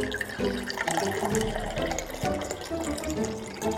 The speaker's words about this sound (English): You're pouring your water bottle into the keyhole? That's right. When the water freezes, it'll take the shape of the key.